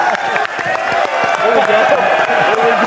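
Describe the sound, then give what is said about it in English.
A live crowd applauds, steady dense clapping with scattered sharp claps, mixed with loud overlapping chatter and cheering voices throughout. “Give it up for him.”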